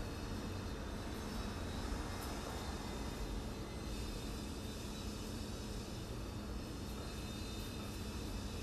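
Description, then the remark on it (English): A steady, droning engine roar like an airplane or helicopter holds at an even level throughout, a broad rumble with faint high whine and no voices. “Cars, construction, possibly an airplane or a helicopter.”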